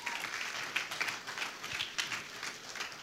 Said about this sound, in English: Come on, give God a good praise clap.